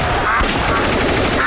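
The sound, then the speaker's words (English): Loud shotgun shots, number three shot fired at ducks such as widgeon, in a rapid, continuous volley, the sharp blasts running together into a dense crackle, with faint honking bird calls threaded through. “Ha ha, suck on these number three shots, you widgeon.”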